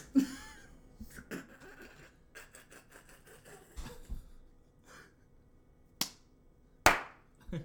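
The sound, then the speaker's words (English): Two sharp, loud hand claps about a second apart, made to sync the audio, follow a stretch of quiet rustling and soft knocks with no talking. “We're clap synced and we are ready to go.”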